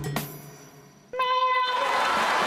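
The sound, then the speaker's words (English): The Hellmann's Mayo Cat gives one short, high-pitched meow, loud and clear, after a brief soft click and low hum. A steady hiss of background noise follows. “And then she says, meow.”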